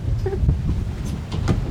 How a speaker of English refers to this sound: It's windy and stormy now. We're moving the conversation inside.